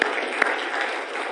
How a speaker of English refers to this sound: Come on, give him one more hand clap of praise.